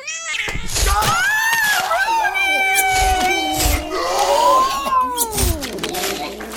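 A loud cat-like yowl from an angry moon kitty rises and wavers into harsh screeching, with overlapping snarling cries and bursts of hissing noise over several seconds.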